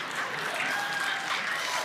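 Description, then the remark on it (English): A room full of people clapping together, a dense, steady wash of applause with no gaps, fairly loud and sustained throughout. “Like, are you clapping because you like it or because you don't like what I”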